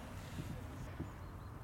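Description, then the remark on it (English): A small boat rocks on open water near the shore, with a steady low rumble, soft lapping and some wind buffeting the microphone, all fairly quiet and continuous throughout. “I'm close to shore in any case, so, you know, I'd be fine jumping out of the boat.”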